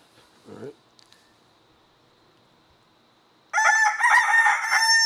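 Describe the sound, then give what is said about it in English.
A rooster sound effect: after a few quiet seconds with a faint low murmur, a rooster bursts into a loud, harsh crow with strong raspy harmonics, filling the final second and a half. “When you look up a rooster sound effect, and there's opening credits for the production company who put it together.”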